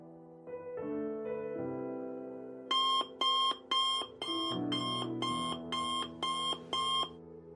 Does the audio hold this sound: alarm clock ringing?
yes